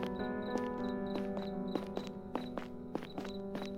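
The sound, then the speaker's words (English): Steady footsteps walk along a hard street surface, each step a crisp tap in a regular rhythm, over a constant low electrical hum. “Why am I hearing another set of footsteps?”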